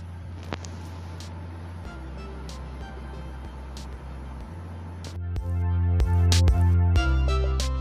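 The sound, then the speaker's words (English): Steady low rumble inside a car during an afternoon news report recorded in the car, the engine droning, a few sharp clicks and knocks, then the engine noise swells louder and more tonal in the last few seconds. “This afternoon report, Street Now News afternoon report within the car.”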